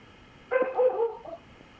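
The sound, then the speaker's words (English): A female dog gives a short burst of vocalizing, a couple of quick barks running into a brief whiny yip, moderately loud, with no one talking over it. “Well, I don't know if your dog agrees with me or with you, but she has an opinion.”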